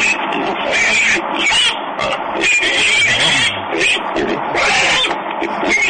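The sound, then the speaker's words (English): Loud, harsh squealing and grunting like a pig, nearly continuous for several seconds, rising in shrill bursts with brief dips in between. “Wait, did she actually turn him into a pig?”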